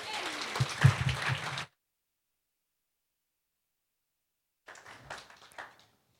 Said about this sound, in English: Give him a big round of applause, sir.